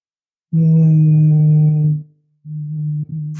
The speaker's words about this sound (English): And then I hum on the exhale. I find it makes me feel like I'm tuning myself like an instrument. I feel the vibration going through me, and it allows me to feel calm, relaxed, and grounded.